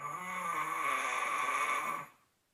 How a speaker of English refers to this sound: My wife recorded my snoring and it sounded pretty intense. You know, it's pretty loud and it's got to be annoying.